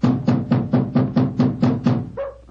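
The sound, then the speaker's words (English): A rapid, steady series of about eight loud knocks on the wooden door of an elephant house, evenly spaced, followed by a brief, softer tonal sound as the knocking stops. “Knock again, old fellow, will you?”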